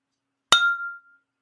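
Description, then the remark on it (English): Glasses clink together once in a toast, a sharp bright strike followed by a short ringing tone that fades within about half a second. No voices are heard. “Cheers to you, girl.”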